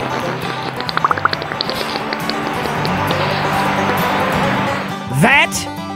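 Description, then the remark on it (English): A beaver farting underwater while sloshing around in water in a wooded area in England: a steady, bubbly burble with a few quick puffs early on and a brief rising squeak near the end. “Wanna hear what a beaver farting sounds like”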